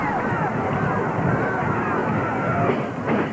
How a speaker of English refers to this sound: Crowd obviously is going to be very Lawler fan favourite, as you can hear.